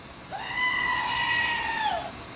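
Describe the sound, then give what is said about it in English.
A single drawn-out goat scream from an emergency goat screamer novelty toy bought on Amazon, loud, holding a steady strained pitch for nearly two seconds before breaking off, with no talking. “And it is the emergency goat screamer.”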